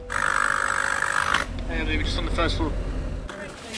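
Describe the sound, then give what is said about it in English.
Constant low rumble of heavy traffic on a street in Clerkenwell, central London, on a hot summer's day, beside a tall building with a heavy metallic door. A loud droning engine sounds for the first second and a half, then passing vehicles and faint indistinct voices mix into the street noise. “It's a hot summer's day, there's busy traffic, and I'm standing by a tall building with a heavy metallic door.”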